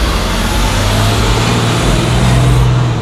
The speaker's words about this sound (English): That's a loud bus. Yeah. School bus. I feel like school buses are the most gas-guzzling things on this planet. If there's anything that deserves to be gas-guzzling, it's a school bus.